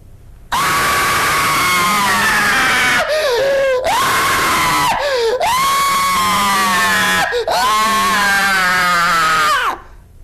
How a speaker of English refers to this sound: That was wicked, man. And it's a good scream. It's an amazing scream. Cathartic. Yes. Yes. It's an amazing scream.